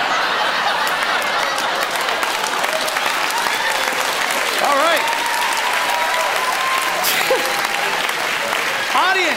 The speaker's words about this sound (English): It is up to you to pick a winner by applause.